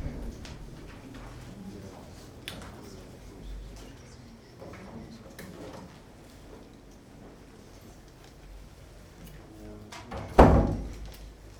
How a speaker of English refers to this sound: Okay, we'll shut the door so we don't scare anybody going past.